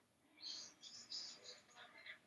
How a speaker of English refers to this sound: And I think, do I maybe hear all of your birds in the background?